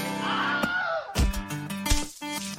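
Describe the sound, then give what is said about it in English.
A Wilhelm scream: a brief, strained yell that swoops up and then falls in pitch, followed by a few heavy, crashing thuds and bursts of noise. “That was the scream. The Wilhelm scream, which we discussed right.”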